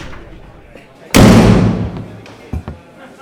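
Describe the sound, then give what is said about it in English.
A large man flings open the door of a makeshift tavern in the center of town with one loud bang that rings out and fades over about a second, followed by a couple of lighter knocks against a faint background murmur of conversation and laughter. “Conversation and laughter erupted as a large man flung the door open.”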